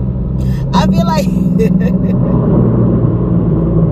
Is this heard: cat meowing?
no